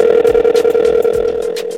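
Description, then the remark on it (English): A telephone ringing tone heard down the line as a call goes through to an artist for an interview: a steady, continuous electronic tone, fairly loud and clear, with no one talking over it. “About to get … on the phone line right now.”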